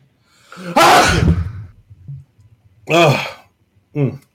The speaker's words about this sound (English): Oh, I got to sneeze. Hold on.